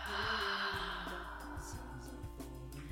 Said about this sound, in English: Again, inhale. And exhale. Good. Another one. Inhale. And exhale.